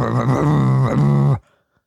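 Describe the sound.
A voice imitates a man revving his car after getting home from work, with a loud, buzzy, throaty drone that swells up twice in pitch, then cuts off abruptly into silence.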